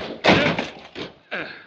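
Three heavy crashes of a door being battered and broken down by people forcing their way in, the first loudest and longest, followed by two more forceful blows with splintering clatter.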